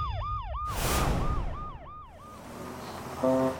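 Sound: police car siren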